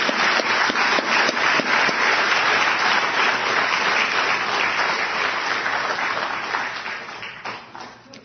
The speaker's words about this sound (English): I just want to give a round of applause for all those people who the Lord has moved their hearts to serve.